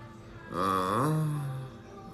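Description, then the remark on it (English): A single drawn-out burp, low and croaky with a slight rise then a steady droning tail, lasting just over a second, moderately loud, with no talking around it. “That burp encapsulates what I feel about mankind. It's not a big burp. It's not a small burp.”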